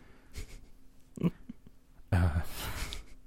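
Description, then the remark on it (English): A breathy yawn: a soft intake of air, then a long, loud voiced exhale that trails off into airy breath, with no talking around it. “Besides yawning.”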